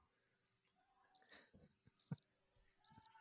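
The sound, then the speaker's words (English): Crickets chirp in three short, high-pitched trilling bursts spaced roughly a second apart, clear and fairly close, with no voices or other sounds around them. “You got to put a cricket.”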